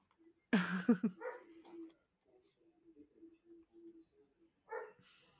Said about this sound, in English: Oh, my dog's barking now. Oh no, he's playing with his sister.